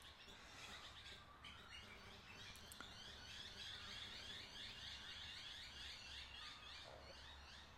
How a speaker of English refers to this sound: I'm up at 4:41 today. I'm on fire. Listen to those birds. Oh my God, they're on fire too. The sun's just cracking. And the sky's just lighting up a little bit finally.